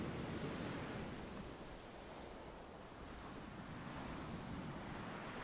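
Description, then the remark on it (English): The Jacobite steam train grinds to a halt, releasing massive plumes of steam and pressure from its tank in a long, steady roar of hissing steam, a broad rushing noise that holds at an even loudness throughout, with no voices. “At long last, the Jacobite steam train grinds to a halt, with more massive plumes of steam and pressure released from its tank.”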